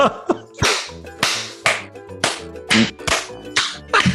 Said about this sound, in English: Do you guys know if this clapping actually helps anybody? Or is it just something we do randomly? I enjoy it.